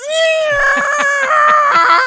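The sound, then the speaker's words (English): A voice imitates the scream of an electronic Velociraptor toy that screamed when its legs were squeezed: one loud, shrill, sustained wail lasting about two seconds, wavering slightly in pitch, with a rapid rattling pulse running underneath. “I had the Velociraptor screaming electronic toy that when you squeezed its legs, it would go.”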